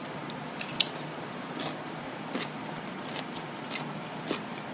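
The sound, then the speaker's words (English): Wet crunching as someone bites into a crunchy pickle and chews, with a sharp snap early on followed by several irregular juicy crunches and squishes, no talking. “I just made a really big mess and got pickle juice in my nose.”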